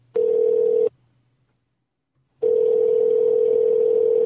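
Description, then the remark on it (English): A phone line's ringback tone on an outgoing call to a business: a short steady electronic buzz, a pause of about a second and a half, then a second longer ring that continues to the end. Clear, with no voices. “You call the person up.”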